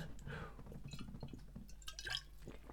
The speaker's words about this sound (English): Just going to have another sip of clean water here.